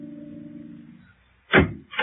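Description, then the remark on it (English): A low, steady hum fades out, followed by a short pause and then two sharp, loud knocks on an apartment door on the fourth floor, the second starting right at the end. “so I went over to the elevator without talking to him and came directly up to the fourth floor and knocked on her door.”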